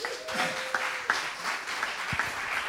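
A crowd at Devoted, a Christian festival, applauds steadily, a dense wash of many hands clapping at once with a few sharper claps standing out, holding at an even level throughout.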